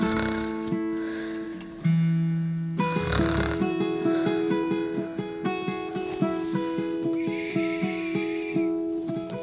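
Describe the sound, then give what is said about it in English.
A voice imitates a loud, drawn-out dinosaur snore, a rough rasping snort rising over light background music, followed by the music continuing with steady plucked notes. “Sleep with a dinosaur snore again.”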